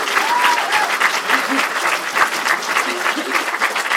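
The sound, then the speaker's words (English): An audience claps steadily in a dense, sustained burst of applause lasting about four seconds, loud and even throughout, with a few faint voices mixed into the crowd noise, voting by applause for the winner of a cat quiz. “So, audience, would you tell me by applause who you think won this cat quiz?”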